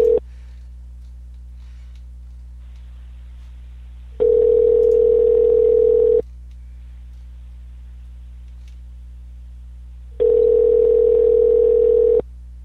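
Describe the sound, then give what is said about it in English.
A telephone ringback tone purrs twice while calling Star Trek Renegades actor Manu Interaimi, each steady buzzing ring lasting about two seconds, separated by a long silent pause, heard clearly over the line with no one speaking. “It's still ringing.”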